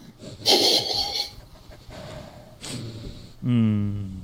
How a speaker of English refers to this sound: But I'm trying to get a nice little whiff of that aroma that I've been drinking. Sniffy sniff.